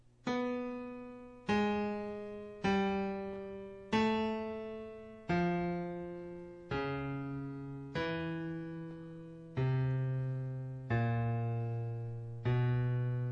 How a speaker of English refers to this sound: Here's the first melody that you hear.